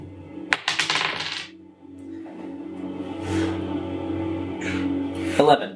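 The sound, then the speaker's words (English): Stress dice are rolled for a panic roll, rattling and clattering onto a hard surface in a quick burst of sharp clicks, followed by a low steady hum and one more brief clatter near the end. “Give me a panic roll.”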